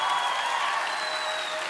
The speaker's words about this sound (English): You're gonna realize you shouldn't have applauded later in the service.